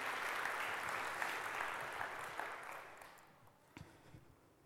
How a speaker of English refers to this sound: So would you join me as I honour Lizzie this morning and give her a round of applause.